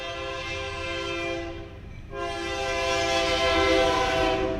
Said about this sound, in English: Here comes our train. We hadn't had a train come through in a while. Let me let that come on through, because that horn.